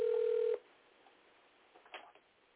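A telephone line tone sounds steadily for about half a second, then drops to a quiet, hissy line with a few faint clicks and blips as a phone call to a woman connects and dials out.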